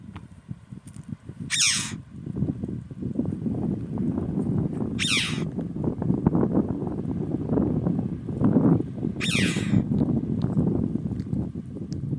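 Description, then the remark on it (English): Three sharp, high screeching chough calls ring out at regular intervals over a steady roar of wind buffeting an open headland. “Such a distinctive call. That screech. Chow, chow. Windy there on the headland.”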